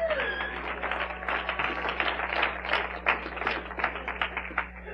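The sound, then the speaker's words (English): An audience gives God a hand clap of praise, a dense, steady patter of many hands that keeps going without a pause, with a low electrical hum running underneath. “Say, give God a hand clap of praise.”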